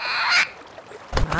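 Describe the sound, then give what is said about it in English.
A giant flightless bird lets out loud, harsh honking calls: one brassy honk, a brief lull, then a second burst of honks at the end, with no talking. “It's just that it's a giant flightless bird.”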